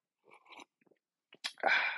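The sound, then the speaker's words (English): Wet mouth sounds: a few soft smacks, then a loud, airy slurp as someone sips hot black coffee from a cup, with no talking. “Sorry if you get weirded out by listening to people drink things, but yeah, it's just gonna be me and you and a cup of coffee”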